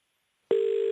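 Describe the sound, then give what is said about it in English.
After a moment of silence, a telephone line tone sounds as Australian radio station Triple M places a call to Nelson Mandela: one steady, loud electronic beep held for under half a second, then cut off. No one speaks. “Now, we're going to try and give him a call and see if we can reach the great man.”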